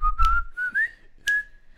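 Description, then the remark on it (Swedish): A person whistles a short melodic tune, clear steady tones around a single pitch with small rises, broken by brief breathy bursts of laughter between phrases. “Det är jättesvårt att vissla när man skrattar.”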